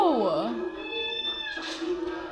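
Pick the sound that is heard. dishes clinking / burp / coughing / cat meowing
cat meowing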